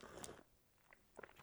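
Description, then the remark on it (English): Ice cubes being crunched between teeth, two bursts of crisp, brittle cracking separated by a brief quiet pause, with no talking. “Oh, sorry to crunch that ice.”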